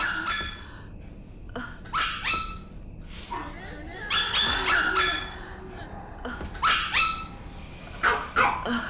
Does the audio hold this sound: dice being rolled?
no